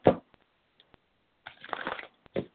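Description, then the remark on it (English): Crisp papery rustling and snapping of cards being shuffled for a card reading: a sharp burst, a few soft clicks, then a longer riffling flurry and one more quick burst. No one speaks. “Sometimes December, when I'm shuffling, and if I have trouble shuffling, you know, then it means it's kind of conflicting getting that date, you know.”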